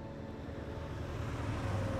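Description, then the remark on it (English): A newspaper delivery truck speeds past, its engine rumbling steadily in a deep continuous drone that swells slightly louder toward the end, with no voices present. “Sometime after their loss at the show, Duncan was walking Rin Tin Tin when a newspaper delivery truck sped past them.”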